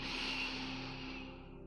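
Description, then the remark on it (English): A long, steady, deep breath drawn in through the nose during a breathing exercise, a soft airy hiss lasting a couple of seconds and slowly fading out. It is quiet, with no talking. “Breathing in through your nose.”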